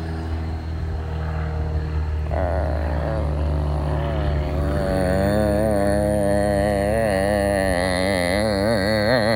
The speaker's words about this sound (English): That's the house shuddering. Yeah, this is the house shuddering. Special effects.